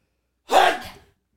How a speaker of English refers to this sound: Ah, shit. Bless you.